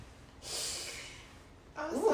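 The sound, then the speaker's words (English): A sudden, harsh snorting rush of air through the nose as someone chokes and sputters on Jameson whiskey that went up their nose while drinking, loud, followed by a voice starting to speak. “Jameson in my nose coming down.”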